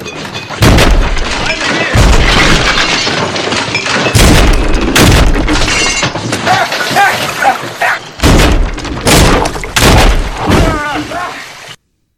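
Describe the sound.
A shark slams against a boat hull in heavy, booming thuds, loud and irregular, several blows over a dense, chaotic background with voices.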